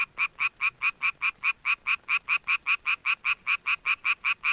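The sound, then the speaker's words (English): A male Japanese tree frog's mating call to attract females: a fast, steady train of about twenty raspy, bright croaks, evenly spaced and loud, with no other sounds or voices. “And here's an example of what a normal mating call sounds like.”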